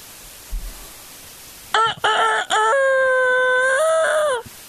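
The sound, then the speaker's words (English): A rooster crows once, loud: a couple of sharp opening notes, then a long sustained cock-a-doodle-doo that holds for about two seconds before cutting off. No talking. “It's a rooster. That's a rooster.”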